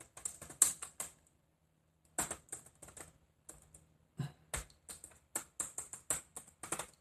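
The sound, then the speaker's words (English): Computer keyboard keys clacking in quick, irregular bursts of typing, fairly crisp, with a couple of short pauses between flurries and no talking. “For those listening to the keys clacking.”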